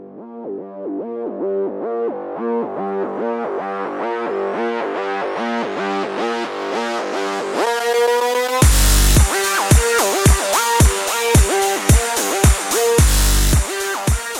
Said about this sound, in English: The bass is thumping.